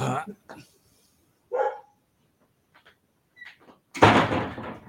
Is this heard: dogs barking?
yes